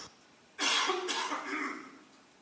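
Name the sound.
cough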